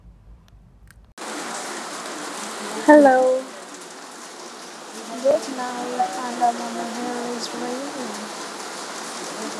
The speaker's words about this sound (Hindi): लग रहा है पीछे बहुत तेज बारिश हो रही है।